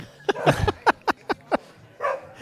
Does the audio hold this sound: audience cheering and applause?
no